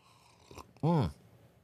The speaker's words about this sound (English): Am I going to cut while I loudly slurp coffee? No. Out of my Asylum 817 coffee mug.